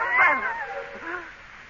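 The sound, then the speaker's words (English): A cat lets out a single drawn-out yowl, loud, its strained wail sliding downward in pitch and trailing off over under two seconds. “Doug, don't touch that cat.”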